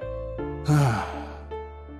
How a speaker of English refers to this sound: Exhale through your mouth so that you make a whoosh sound.